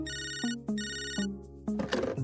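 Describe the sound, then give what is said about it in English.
A cell phone's ringtone trills in two repeated electronic bursts, bright and steady, followed by a soft click and faint rustling as if the call is picked up; an outgoing call placed from the phone's contacts to a grandfather. “And he pulls out his cell phone and he goes to his contacts and he hits Grandpa and it starts to ring.”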